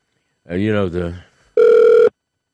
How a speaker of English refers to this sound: There's a ring. We're ringing.